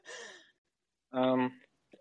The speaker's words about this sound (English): I think I hear you breathing. I hear you breathing, so you're not muted.